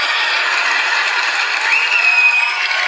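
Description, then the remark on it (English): A crowd gives a standing ovation, applauding steadily and loudly for about three seconds, a dense wash of many hands clapping with no break and no voices speaking, and a brief high whistle-like tone midway. “Not only was what she was saying not funny, people are giving her standing ovations.”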